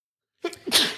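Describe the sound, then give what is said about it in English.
A single loud sneeze bursts out after a moment of silence, with a short sharp intake followed by a hissy, breathy release. “Bless you, …. I tried to mute myself.”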